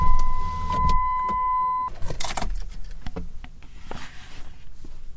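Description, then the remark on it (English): A car's power window hums down with a steady, mid-pitched electric whine for about two seconds, then stops, followed by scattered clicks, thumps and faint rustling. “Let me put down my window but see if I can't hear it.”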